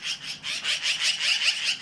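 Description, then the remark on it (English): A magpie's harsh, rattling chatter: a rapid run of scratchy, high-pitched rasping notes, steady and fairly loud throughout, with no voices. “All of it accompanied by the magpie's call, which is not exactly the bird world's sweetest.”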